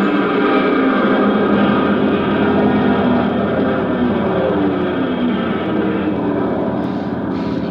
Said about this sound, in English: At 300 feet, I threw open the throttle. The plane clawed for altitude, but the wind was hitting it like a pneumatic drill trying to crack it wide open.